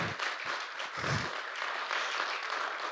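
A room full of people applauds in a steady, dense wash of clapping that holds for the whole stretch, fairly loud and close, with no voices standing out.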